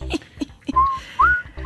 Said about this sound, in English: Yeah, let me think for a second. I can whistle the Jeopardy music if you'd like.